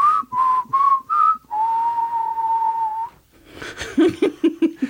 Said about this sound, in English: Well, I have a JG whistle. That's true, you for do. For when we're in department stores and such, yeah. and I can't find you. That's right, it's... And then sometimes you'll whistle back.